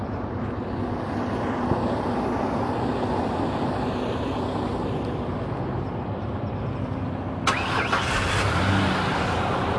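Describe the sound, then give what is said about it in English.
Heavy Freightliner 18-wheeler trucks rolling past on a road, a loud, steady roar of engines and tires, with a brighter hissing burst joining in near the end. No one speaks. “There's a lot of trucks, a lot of Freightliner trucks, the 18-wheelers.”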